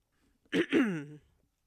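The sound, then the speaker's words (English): A fairly loud throat clearing in two quick rasping pushes that trail into a short voiced hum, heard alone against near silence. “I wish I had a cough button.”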